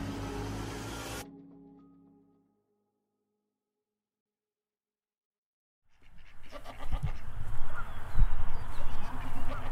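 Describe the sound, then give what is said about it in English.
A loud sound cuts off and fades into a few seconds of silence, then goats bleat amid a busy farmyard clamor at an old farmhouse in Michigan in mud season, with fowl-like honks and quacks of ducks and chickens mixed in. “It's mud season up here, but the goats and the ducks and the crazy-looking chickens, they don't seem to mind the mess.”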